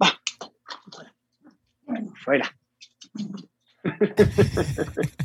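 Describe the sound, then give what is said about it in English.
A dog whimpers and whines in short, uneven bursts, with high thin cries separated by pauses, ending in a louder, rougher stretch of noise. The dog has hooked himself on a modem cable. “Dog is, I don't know what he's doing.”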